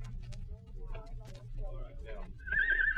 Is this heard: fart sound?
no